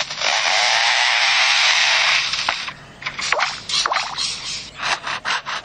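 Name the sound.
bird mimicking a chainsaw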